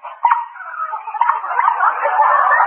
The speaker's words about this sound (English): Say, what was that? Did the engine drop out? No, Smarty. It's the new sunken motor. And listen to this horn.